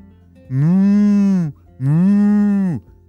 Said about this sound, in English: Arbor was walking very quickly to the barn, which is where that mooing was coming from.